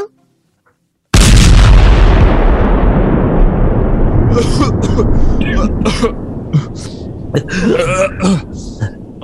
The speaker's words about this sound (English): What the hell kind of safety module is that? Exploding guitar.